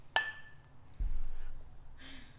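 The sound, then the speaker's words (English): Glasses of dark beer clink together once in a toast, a sharp bright ring that fades quickly, followed by low muffled handling noise and soft rustling. “It's dark as hell. Clink.”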